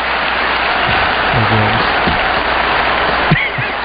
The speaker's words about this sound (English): Russians cheering on Rocky. I mean, could you imagine? They'd all be killed for that.